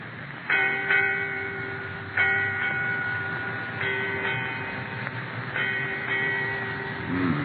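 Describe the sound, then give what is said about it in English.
A ship's bell rings eight times in four evenly spaced pairs of clear metallic strikes, each pair's ringing tone lingering before the next. Moderately loud, with no voices. “Eight bells, Captain. Aye. Eight bells, mate.”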